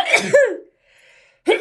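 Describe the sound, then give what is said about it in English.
A loud sneeze with a voiced, rising wind-up into a sharp burst, followed by a moment of near silence before another short, harsh burst begins at the very end. “I'm going to sneeze.”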